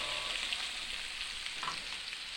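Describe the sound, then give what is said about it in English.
Large chunks of meat, one cut into four, sear in a hot pan before going into a pressure cooker, with a steady, dense crackling sizzle that holds at an even loudness throughout and a few brief pops rising out of the hiss. No one speaks. “I'm about to stick these giant hunks of meat in it because these are getting nicely seared.”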